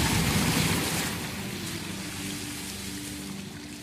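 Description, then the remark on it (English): A loud splash of someone bursting up out of pool water about 10 feet into the air, followed by a steady rushing, churning wash that gradually eases. No one speaks. “Megan just bursts out of the water 10 feet into the air.”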